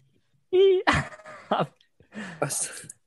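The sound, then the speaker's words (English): A person doing dog impressions makes a short, whiny dog-like yelp with a wavering pitch, followed by several bursts of strained, gravelly vocalizing that mimic a dog, fairly loud. “No, it's just the dog impressions.”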